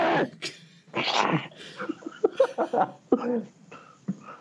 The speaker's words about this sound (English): Sorry. I'm allowed sneezes.